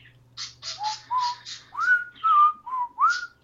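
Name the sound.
birds chirping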